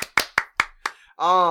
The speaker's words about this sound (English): Before we move on to our Unearthed tips and tricks, we have three brand new products out this week. Yay! I'm gonna press the cheer button. Yay!